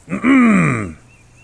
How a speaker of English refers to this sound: He's going to clear his throat really loudly, see if that wakes up the face.